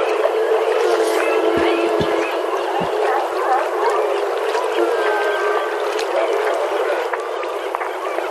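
Seals calling, with drawn-out moans and thin whistling tones overlapping above a dense, bubbly watery wash that runs steadily throughout, plus a few low thumps near the start.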